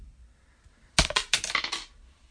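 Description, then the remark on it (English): A coin, tossed to pick between the Bears (heads) and the Saints (tails) for an NFL game, hits a hard surface with a sharp metallic clatter, then bounces and rattles in a quick series of bright clinks for about a second before settling into quiet. “Bears are heads. Saints, the road dogs, are tails.”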